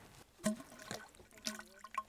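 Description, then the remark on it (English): Soft sloshing and gurgling as the tube of a water scope is lowered into lake water, with a few brief splashy bursts over a quiet background and no voices. “So we're going to put the tube into the water.”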